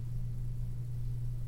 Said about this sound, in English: Oh, yeah. Oh, yeah, that's totally the fucking dryer. Hold on.